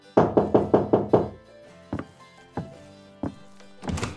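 Five quick, firm knocks on a wooden door in a steady burst, followed by a few slower, scattered thumps, fairly loud, with no voices; two people knocking on someone's door in the evening.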